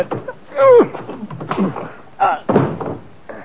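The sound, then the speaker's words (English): A heavy punch to a man's jaw lands with a dull thud, followed by knocks and bumps as he goes down, mixed with short shouts and grunts. “you knocked him off. So I did. He must have a very weak jaw.”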